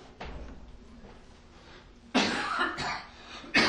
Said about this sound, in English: You can't get it, it's a sinus infection. I'm saying that to y'all because I'm coughing on y'all.